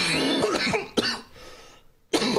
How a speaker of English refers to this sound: Quit coughing, buddy.